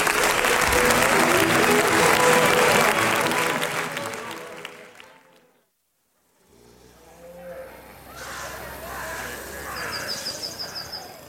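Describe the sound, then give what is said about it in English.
A dense round of audience applause builds loud and steady for several seconds, then fades out into silence; afterward, softer background noise returns with a few chirpy, bird-like calls. “A big round of applause for Sylvia, folks.”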